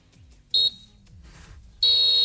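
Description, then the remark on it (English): A referee's final whistle in football highlights of the Chelsea-Liverpool game: a short shrill blast, then after a pause a long sustained one that runs to the end, over a low murmur of crowd noise. “That's your final whistle”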